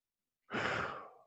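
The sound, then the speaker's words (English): A single deep, audible exhale like a long sigh, swelling quickly and then fading out over under a second with no talking. “that was a nice reminder to breathe there. I heard you breathing.”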